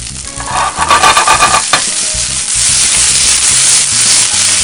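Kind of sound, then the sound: food or drink, vegetables sizzling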